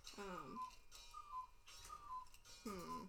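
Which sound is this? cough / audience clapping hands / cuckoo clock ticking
cuckoo clock ticking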